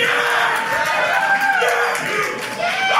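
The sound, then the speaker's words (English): A large live crowd cheers loudly and continuously, with whoops and shouts rising over a dense roar of voices throughout. “They're a good crowd, man. They're pumped.”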